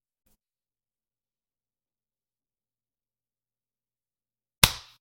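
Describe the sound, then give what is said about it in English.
After more than four seconds of silence, one sharp hand clap, made to sync recordings on a count of 38, cracks out, loud and crisp, with a quick decay and nothing else around it. “You said 38. It worked. I clapped.”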